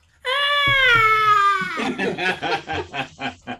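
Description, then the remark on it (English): In a role-play game, a person's voice imitates the character Nyarx screaming like a little girl: a shrill, high-pitched scream held for about a second and a half, sliding slightly downward, then a quick series of choppy, breathy giggles. “Nyarx screams like a little girl and runs upside.”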